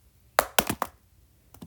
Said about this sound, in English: If you hear that noise, that's me throwing pens around. I like to do that with my hands.